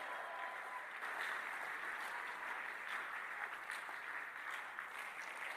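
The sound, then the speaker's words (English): An audience claps loudly and continuously for several seconds, a dense, steady roar of hands with a few raised voices shouting praise to God blending into the noise. “Come on, slap on and shout and scream and give God your loudest shout of praise in the house.”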